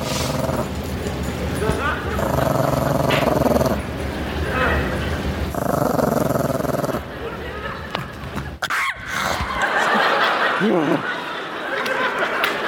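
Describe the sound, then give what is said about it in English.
A dog growls and snarls in sustained, rough bursts with a few sharper yips, loud, while people talk and chuckle over it. “Zach, the evil dog, this is my sister's dog, this dog hates everyone and everything about the world.”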